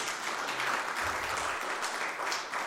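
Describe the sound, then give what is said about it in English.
A crowd in a Mennonite church claps steadily as a woman is invited up to share a testimony about a maternity home, a dense, even wash of many hands applauding at once for the full few seconds with no voices on top. “Do you guys clap in a Mennonite church?”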